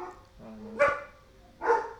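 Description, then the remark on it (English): Two sharp dog barks about a second apart, loud, with a low growly tone before the first; no one speaks. “Yeah, so you want to tell us about other things going on in the world while I leave the room and go kill our dogs?”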